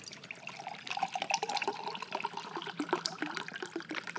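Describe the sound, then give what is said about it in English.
Water pours steadily into a cup until it overflows, splashing and gurgling with a continuous trickling rush, no voices present. “The fullness of joy is a picture of joy that is so full that it overflows like this water cup.”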